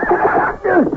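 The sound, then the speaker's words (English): A horse that has gone wild whinnies loudly, its shrill, wavering cry breaking and then sliding downward in a second quavering burst, with no talking over it. “The horse has gone wild!”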